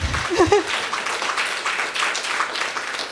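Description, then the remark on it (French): An audience applauds Barbada with dense, steady clapping that fills the whole stretch at a fairly even loudness, with a brief vocal cheer rising over it near the start. “Oui, applaudissons Barbada.”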